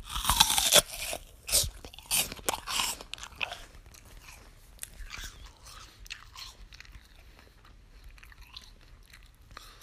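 Loud crunching bites into a crisp apple, followed by several seconds of wet, open-mouthed chewing that gradually softens. No one speaks.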